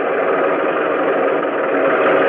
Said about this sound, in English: where we could watch the tanks roll on deck